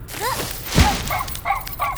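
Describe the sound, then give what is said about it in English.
A dog barks several times in quick, uneven bursts, short sharp yips at moderate volume, with no one talking. “Maybe we can see the dog later.”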